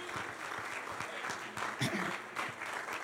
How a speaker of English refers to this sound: Would you clap your hands to the Lord one last time? Just because the Lord's been good.